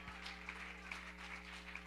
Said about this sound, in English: Let's give him one more hand clap of praise and a shout of victory. Hallelujah.